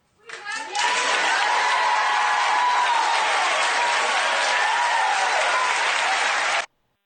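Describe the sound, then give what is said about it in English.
Sustained, dense applause from a large audience giving Megyn Kelly a standing ovation, a steady wash of many hands clapping at full volume for several seconds before cutting off abruptly, with faint cheering voices mixed in. “And then the audience is applauding, giving her a standing ovation.”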